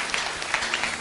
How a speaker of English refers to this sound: Can you clap for this old woman? Powerful.